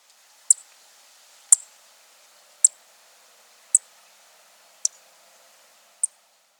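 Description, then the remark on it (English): Six sharp, high chip notes from a Vesper Sparrow, evenly spaced about a second apart, each a brief clear tick standing alone against a quiet background. “Now, let's compare the Vesper Sparrow chip and the Savannah Sparrow chip. First, the Vesper Sparrow.”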